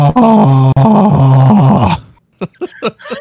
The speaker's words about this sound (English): Screaming into the microphone.